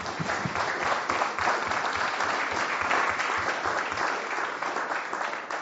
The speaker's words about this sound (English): And thank you guys so much. Let's give everyone another round of applause.